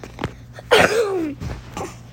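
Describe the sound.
A sharp cough bursts out and trails into a drawn-out, descending groan, followed by a couple of softer, brief breathy bursts.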